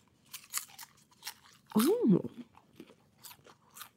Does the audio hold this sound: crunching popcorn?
yes